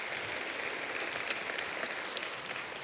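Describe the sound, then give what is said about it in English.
An audience at Great Hills Baptist Church claps steadily for the church staff for a few seconds, a dense, even wash of many hands with no voices rising above it and no clear break or swell. “Yes, that's a good time to clap.”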